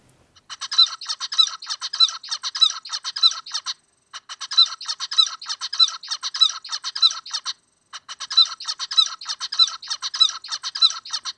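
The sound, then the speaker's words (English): A zebra finch sings three clear bouts of its normal, very regular rhythmic song, each a run of evenly spaced, buzzy chirps and notes, separated by short pauses, fairly loud with no other sounds. “So what's really striking in the rhythmic example is how actually very regular the normal zebra finch song is.”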